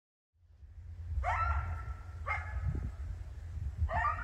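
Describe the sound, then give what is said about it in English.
Two coyotes from a pack give three sharp, rising yipping barks at uneven intervals in the early evening in a rural area on the edge of Bellingham, Washington State, each call brief and ringing, set against a steady low outdoor rumble. “Two coyotes from a pack that lives just down the hill from me.”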